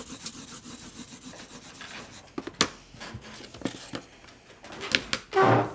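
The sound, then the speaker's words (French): Dry scratching of a pencil moving across paper in quick irregular strokes as someone draws a tree, with short bursts of rubbing and a few sharper taps; no one speaks. “Bah maintenant je te regarde dessiner.”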